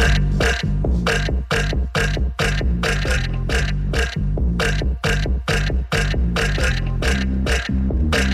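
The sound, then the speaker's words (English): A steady, rhythmic run of loud, deep burps strung together like a musical beat, roughly two per second for several seconds, with no talking. “So you're going to hear some screams, some laughs, a bunch of burps.”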